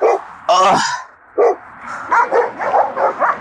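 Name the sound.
dogs barking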